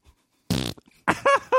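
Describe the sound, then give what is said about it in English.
A loud, buzzy fart blasts for about a quarter second, followed by a few small sputters and then two more rasping, tonal fart squeaks, the last cutting off abruptly. “Second of all, get control of your farts.”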